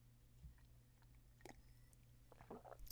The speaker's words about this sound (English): Excuse me, I needed another sip.